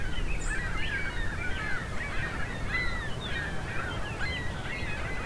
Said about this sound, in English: These gulls are rather incessant. Kind of hoping this flock moves on so I can hear the fox sparrows better. The main part of the gull flock has moved on, I think.